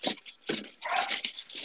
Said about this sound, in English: Other than barking dogs in my house, everything's great.